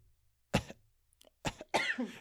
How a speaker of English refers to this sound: My fake cough made you cough. That was awesome.